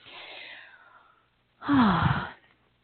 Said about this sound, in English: I was, as you were yawning, I was yawning